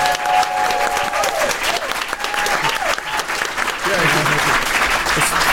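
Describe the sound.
A crowd applauds in a steady, dense wash of clapping that lasts the whole stretch, with a few voices and whoops rising briefly through it.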